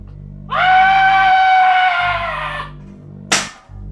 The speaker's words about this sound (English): Is that the Wilhelm scream? Did he just fall?